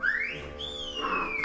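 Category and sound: human body sound, person whistling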